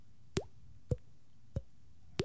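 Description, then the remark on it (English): Someone imitates dripping water with their mouth: four short, wet plops spaced at a steady, unhurried pace, each with a quick upward bloop in pitch, and no talking in between. “That dripping noise?”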